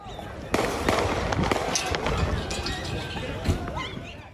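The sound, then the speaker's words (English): Several sharp gunshots crack at irregular intervals over a noisy, muffled background with indistinct voices, the loudest bangs landing early and another near the end. The shots come from a video of a man being chased down a street and knocked down, who then turns and opens fire. “He turns and opens fire.”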